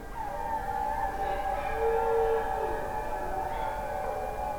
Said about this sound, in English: But actually, I know mine. It's the howl.